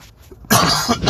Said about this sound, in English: So, sorry about the coughing. I'm getting over a little sickness here this last week and a half ago or so, so I apologize for that.